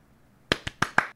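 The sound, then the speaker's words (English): Four quick hand claps on a Zoom call in an uneven rhythm, sharp, with a brief pause between the first pair and the last two, no other sounds around them. “You're like, I've never seen anyone clap in a more awkward way before.”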